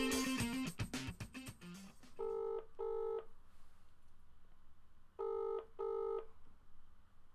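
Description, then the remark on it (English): A quick burst of telephone dialing tones as a call is placed to a man, followed by a ringback tone that sounds twice as a pair of double rings separated by a pause, clear and fairly loud over faint line hiss. “We'll see if we can get him on the phone for a reaction to that.”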